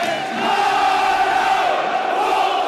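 A huge football crowd of Orient fans sings together at a match against Wolves attended by about 30,000 people, in a loud, sustained chant, thousands of voices blending into a steady, roaring melody with no break across the whole stretch.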